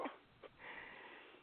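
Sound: dog barking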